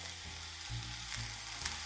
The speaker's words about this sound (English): I just kind of like gently push the mushrooms around so they all, most of them anyway, are touching the bottom of the pan.